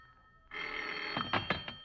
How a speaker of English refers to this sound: It seems like hours later when the phone bell cut through the darkness like a knife.